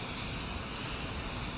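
airplane engine

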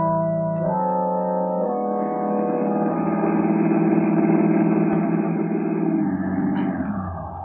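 car engine pulling up

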